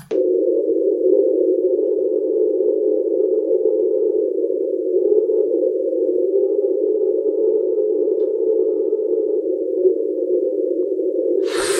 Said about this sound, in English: And then the last one is the train, which was also a grounded iceberg, like the Julia. This was from 1997.